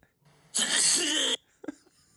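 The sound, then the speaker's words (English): A sneeze sound effect played from a soundboard: one loud, harsh, hissy burst lasting under a second that cuts off abruptly, followed by a brief soft knock in otherwise quiet surroundings. “That is the worst soundboard thing ever. It says sneeze.”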